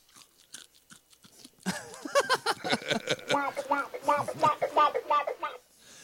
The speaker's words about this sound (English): I thought he's crunching in the microphone.